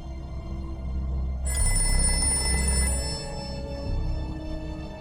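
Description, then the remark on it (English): An old-fashioned telephone bell rings loudly after a brief pause, a bright continuous jangle lasting a couple of seconds over a low, steady rumbling background, then fading into lingering tones. “What could the ringing symbolize? A bell?”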